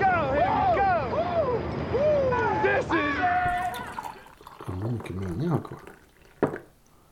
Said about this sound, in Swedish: Nu häller jag upp det här kaffet.